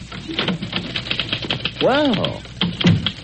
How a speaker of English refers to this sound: Typing on your hand-tooled platinum-plated typewriter, Mr. Bridges.